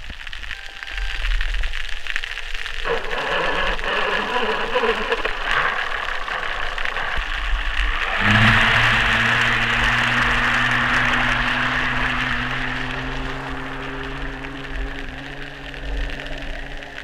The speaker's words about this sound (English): So you're really giving us a sense here of what it sounds like when we humans sort of smother this ocean noise. Yeah, and you know, an important thing to note about that is just one very small outboard engine.